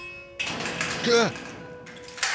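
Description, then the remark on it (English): An old elevator's heavy metal door grinds along with a rough, noisy rattle and a brief metallic squeal in the middle, ending in a dull clunk as it crashes shut, moderately loud. “You both are startled awake at the sound of a old elevator door crashing shut.”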